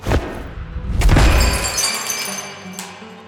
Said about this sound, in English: And she's gonna shove at the form. It falls and shatters into pieces on the ground.